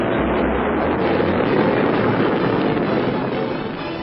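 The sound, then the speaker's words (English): A dense, steady roar of engine rumble and rushing noise fills the whole clip, loud and unbroken, as Foom's multi-atmosphere cruiser, the Bellerophon, blasts off from a small spaceport near London for Starlab, with a deep low-end throb beneath it. “MacGuffin Drone, board Foom's multi-atmosphere cruiser, the Bellerophon, and blast off for Starlab.”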